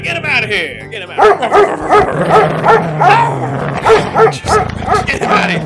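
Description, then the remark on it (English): A dog, Barnyard Dog, barks over and over in a quick, loud string of yapping barks, with people's voices talking and shouting underneath. “Get that Barnyard Dog out of here.”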